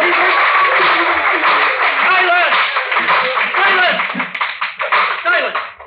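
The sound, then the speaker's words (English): Spectators in a courtroom applaud in a loud, dense burst of clapping mixed with murmuring voices and a few chuckles, the noise holding steady before thinning out near the end. “The sergeant-at-arms will bring forward immediately the parties that applauded.”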